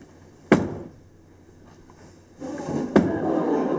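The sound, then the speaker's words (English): A door shuts with a sharp thud, followed a couple of seconds later by a second similar knock as a low rumbling background rises. No one speaks. “You don't think an alligator can open a door, do you? She did close it.”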